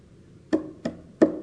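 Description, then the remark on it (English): Three sharp knocks from a hand rap on a hollow surface, fairly loud, with an uneven rhythm and a short pause between each, over near silence. “It's my hand knocking on your heart.”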